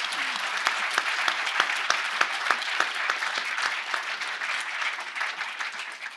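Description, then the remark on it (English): An audience applauds the panelists in a steady round of clapping, dense and even throughout with sharp individual claps standing out, holding at a moderate level before easing slightly toward the end. “Everybody give a round of applause for our panelists.”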